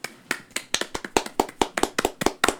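Brief applause, about a dozen sharp, evenly spaced hand claps at a quick steady rhythm, moderately loud, with no voices.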